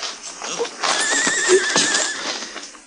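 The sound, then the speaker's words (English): A horse gives a loud, wavering whinny lasting a second or so, with hooves clopping irregularly on hard ground around it. “I'll take my horse then, Ellen.”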